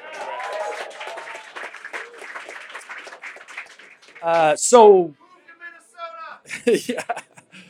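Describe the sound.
A crowd claps steadily for several seconds with voices murmuring underneath, then a few loud voiced shouts and some laughter rise up as the applause fades away.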